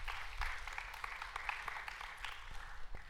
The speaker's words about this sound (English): That's a great word. A round of applause